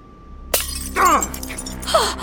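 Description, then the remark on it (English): A drinking glass breaks in someone's hand with a single sharp crack, followed by brief bright tinkling and ringing fragments over a low background hum. “Your hand! You broke your glass!”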